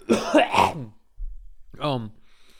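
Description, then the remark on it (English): A loud cough bursts out in a couple of harsh, raspy pushes, then a pause and a short throaty vocal sound, as if clearing the throat afterward. “For some of y'all that don't know, this is one take, so I'm going to leave that cough in.”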